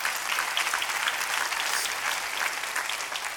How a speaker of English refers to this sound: You can clap your hands.